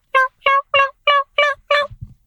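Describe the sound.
A voice imitates a hen turkey's mating call: six evenly spaced, clear yelping notes in a steady rhythm, fairly loud, followed by a few soft low sounds.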